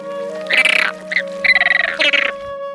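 Flamingo calls: loud, nasal, gabbling honks in two rapid pulsing bursts with a few short grunts between, over a steady low background hum.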